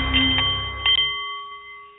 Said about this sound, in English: The Nepalese meditation bowl is chiming, and that means it is time for The Art of the CEO